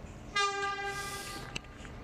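A train horn blares in a single loud, sustained blast lasting about a second, its harmonic tone standing over a steady background rumble, with a short sharp click just after it fades.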